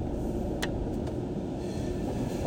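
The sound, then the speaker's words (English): Steady, heavy mechanical rumble of car wash machinery runs throughout as a car, its driver strapped in, goes through the wash and is sprayed, loud, with a couple of brief sharp clicks near the start and no voices. “Where's the fucking guy here at the car wash?”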